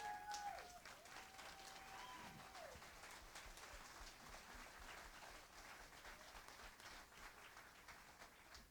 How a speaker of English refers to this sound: Can we give all our actors a big round of applause? Stand up and give them a round of applause, guys.